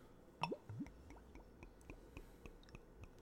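Beer is poured into a glass: a few quick glugging plops at the start, then soft scattered fizzy ticks and drips. It is quiet, with no voices.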